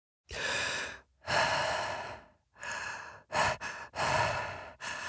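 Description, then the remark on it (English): Heavy mouth breathing from a voice actor performing as an astronaut in a destroyed space station: a series of loud, ragged inhales and exhales, some quick and gasping, repeating unevenly with brief pauses, and no talking. “And it's basically me mouth breathing for 6 hours.”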